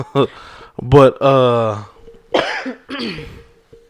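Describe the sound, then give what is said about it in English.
A few stifled coughs in quick succession, broken by a drawn-out voiced strain in between, as someone tries to keep from coughing. “Trying to keep from coughing.”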